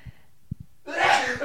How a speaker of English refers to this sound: I am on the verge of sneezing, and let me tell you, it's going to happen in like 3 seconds. Okay, well, I'll just let you do that. Oh, boy, here it comes.